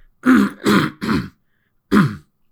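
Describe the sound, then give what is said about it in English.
A man clears his throat in three quick, rough bursts, pauses, then gives one more harsh throat-clearing cough, moderately loud with no talking. “Pardon me, I'm getting over a bit of a cough.”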